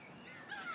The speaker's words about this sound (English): And see if you can notice how your mind responded to the sound of the gull repeatedly flying just generally around me. Are you able to notice it and let it go?